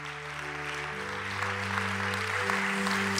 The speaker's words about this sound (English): Come on, let's give God a hand clap for all the great lessons.